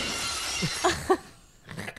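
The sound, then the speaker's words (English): Glass shatters in a bright, noisy crash, followed by ringing chinks and a scatter of small tinkling pieces settling over about two seconds. No voices are heard. “He just sprays shards of broken glass through his penis whenever he climaxes.”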